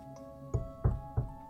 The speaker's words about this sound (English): Can I knock on the box?